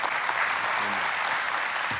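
An audience at a talk claps for a member of the speaker's technical team who is helping bring out containers, in a dense, even wash of applause that holds at the same loudness throughout, with a brief low murmur from the crowd partway through.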